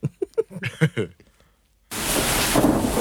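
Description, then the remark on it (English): A brief burst of voice-like sounds gives way to silence, then a sudden, steady wash of heavy rain starts and holds loud until the end. “Oh, it's raining.”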